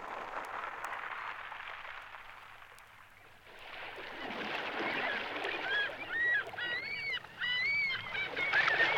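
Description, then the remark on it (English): Water rushes and splashes steadily as a boat moves across it, the wash swelling after a brief lull, with high chirping bird calls joining over the second half. No one speaks. “we've been out on the water for 3 days now”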